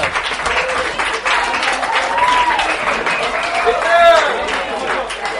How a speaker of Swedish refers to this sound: En applåd